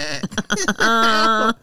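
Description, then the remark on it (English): A voice imitates a goat's bleat: a few choppy, stuttering sounds lead into one sustained, nasal bleat lasting under a second, then silence. “You're not taking the goat.”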